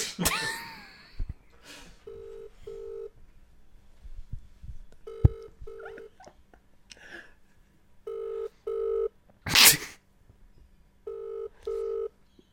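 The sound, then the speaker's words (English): A phone line rings out as an outgoing call to a political campaign phone number waits to connect to an answering machine: four evenly spaced double-pulse ringback tones, each pair about three seconds apart, with a few clicks and rustles in between. “It takes forever to get to the answering machine.”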